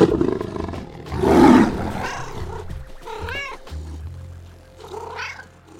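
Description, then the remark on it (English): A loud, low roar from a big cat rumbles up first, followed by several higher, wavering meows from a smaller cat, with no talking. “So today, as we celebrate International Cat Day and raise awareness of cool cats from around the world, let out a meow and a roar for these fantastic felines.”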